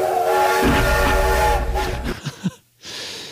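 steam train whistle

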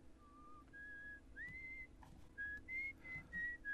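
person whistling a melody

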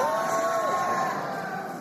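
audience shouting praise

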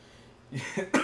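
cough

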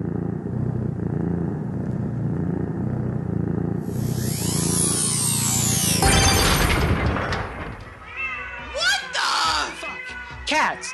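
cat meowing and caterwauling

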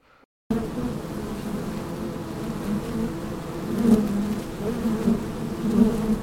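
bees buzzing

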